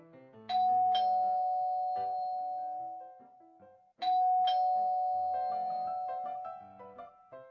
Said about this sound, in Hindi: मैं तीसरी बार बेल बजाने ही वाला था कि दरवाजा खुला।